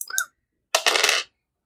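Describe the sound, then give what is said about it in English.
A short clatter of small hard objects: a brief tick near the start, then a bright rattling burst lasting about half a second, as two dice are rolled across a tabletop. “Thank God I have a giant bag of dice.”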